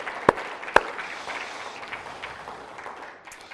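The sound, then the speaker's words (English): An audience applauds steadily to honor the mothers, a dense crackle of many hands clapping together, with two sharp, loud claps standing out near the start before the applause gradually thins and fades. “We can clap for them, right?”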